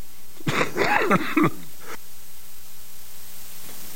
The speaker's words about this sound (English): That was worth a cough.